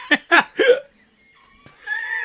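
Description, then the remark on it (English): Three sharp, loud hiccups in quick succession, brought on by eating spicy food, followed by a short pause, a click, and a faint, sustained high-pitched tone. “Now we all have the hiccups.”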